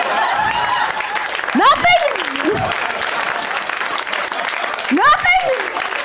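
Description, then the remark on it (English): A crowd applauds steadily throughout an applause break, a dense wash of clapping with a couple of loud whooping yells rising above it, one early and one near the end. “Nothing is the funniest thing to yell when you're getting an applause break.”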